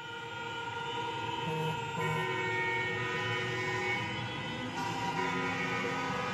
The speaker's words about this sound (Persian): این موقع شب اومدن بیرون که فقط بوق بزنه، اینم مهابات هستش.